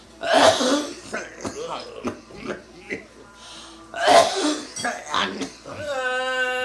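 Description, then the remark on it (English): Two harsh coughing fits, separated by a run of shorter throaty hacks and throat clearing. A drawn-out, strained voiced sound closes it. “Spit it out! Cough up those demons, come.”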